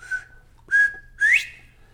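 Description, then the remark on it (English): A clear whistled imitation of a bobwhite quail's spring cock call: a short soft note, a steady held note, then a loud rising upslurred whistle, heard alone. “One of them is the spring cock call count, the traditional bobwhite.”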